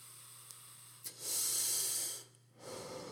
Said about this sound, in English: One sec, let me hit this dumb vape.